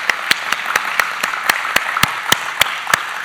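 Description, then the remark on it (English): An audience applauds the standing mothers on Mother's Day, a dense wash of clapping with a few sharp claps standing out in a steady, regular beat about four per second. No voices, just sustained applause. “Just in case you haven't been applauded for yet today, we want to make sure you feel just joy-filled because somebody clapped for you.”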